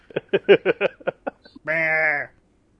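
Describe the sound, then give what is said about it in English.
A sheep bleats: a quick run of short, stuttering bursts followed by one long, loud, wavering baa that trails off, with no talking. “You get back to the game, it's just, like, fucking a stupid-ass cross-eyed sheep looking at you.”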